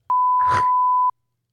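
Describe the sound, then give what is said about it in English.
A steady, loud, one-second censor bleep, a flat pure tone with clicks at both ends, covering a brief burst of cursing that peeks through underneath. “Is that the beep sound?”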